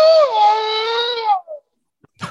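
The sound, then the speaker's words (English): A single loud, drawn-out wolf howl with rich harmonics, its pitch starting high and sliding down before fading, followed by a short trailing yelp and a brief noisy burst. “That was the howl of the wolf.”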